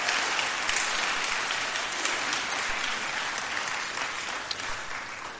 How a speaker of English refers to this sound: Thank you so much for coming and speaking to us. Could we give him a round of applause?